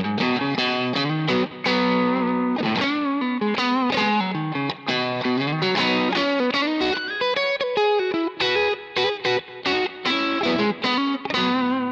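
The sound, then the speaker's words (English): A distorted electric guitar plays a riff of chords and single notes through an amp with a Gold speaker, recorded with a 906 dynamic microphone alone, loud and dense with a gritty, saturated tone and brief gaps between phrases. “Now, instantly, what I'm hearing is, I don't love the 906 with this Gold.”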